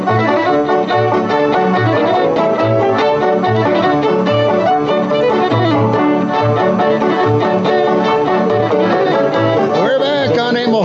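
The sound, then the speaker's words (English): Lively old-time saloon piano music plays loudly and steadily for about eleven seconds, with a bouncing bass and busy, jangly chords that never stop. “How many times have you heard that as somebody's walking into the saloon?”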